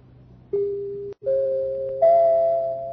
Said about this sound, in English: Those are only the three chimes. What? Three chimes. The three chimes a year an Autolite stay full battery needs water in normal car use.